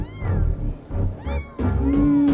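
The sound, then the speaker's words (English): A cat in a phone video lets out several drawn-out, whiny meows in quick succession, loud, with the last one stretched into a long wail. They sound slightly tinny, like phone playback. “Oh, and here's a video of a cat.”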